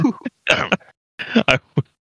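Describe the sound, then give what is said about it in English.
A man clears his throat in two rough, raspy bursts, fairly loud, separated by a short pause; the exaggerated delivery sounds like a voice mimicking a throat clear. “He's clearing his throat.”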